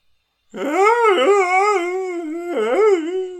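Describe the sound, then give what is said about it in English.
Dogs howl loudly in a long, wavering wail like an ambulance siren that swoops up and down in pitch, dipping and rising again near the end. No one speaks. “These are cousins of Wild Things. Wild Thing does the police siren. Woo, woo, woo. These guys do ambulances.”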